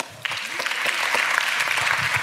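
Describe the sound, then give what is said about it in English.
An audience bursts into applause after a brief quiet moment, the dense clapping holding steady and fairly loud, with no voices heard over it. “Clap it up for her.”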